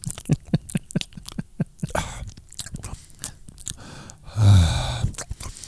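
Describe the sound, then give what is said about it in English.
Sticky chewing of peanut butter, with wet mouth clicks and smacks repeating irregularly, then a louder, thicker burst of mouth noise near the end. “Just one man or woman chewing peanut butter for 22 minutes.”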